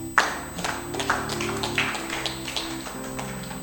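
A handful of scattered handclaps, irregular and fairly sharp, sound over a steady low humming tone. The clapping is sparse rather than full applause, and no one speaks.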